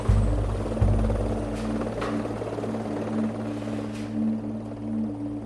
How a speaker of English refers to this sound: After SSE concludes, Person 4 says the patrol moves to their extraction point. Soon after, the helicopters arrive to take the soldiers away.